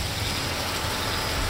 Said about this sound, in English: The pond was unsettled by the rain